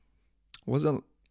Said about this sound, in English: Excuse the coughing. I'm still recovering. I don't know if you guys remember, but last week when I recorded the episode, I was so fucked up. I'm way better now, but I'm still like, you know, a little irritation in my throat.